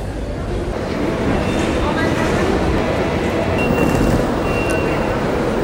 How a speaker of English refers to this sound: Back to Roma Termini train station this morning.